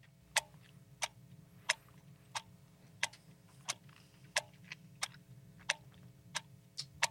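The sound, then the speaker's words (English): A small clock ticks steadily and crisply, about twice per second, with sharp clicks standing out over a low background hum; no one speaks. “And we'll use a little clock.”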